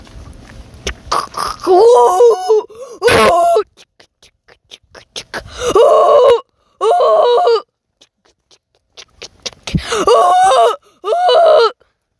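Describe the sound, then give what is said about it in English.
A voice imitates a freight train with a series of loud, rhythmic bursts: wailing, whistle-like tones and breathy chugging in repeated blasts, separated by short pauses. “And now a freight train.”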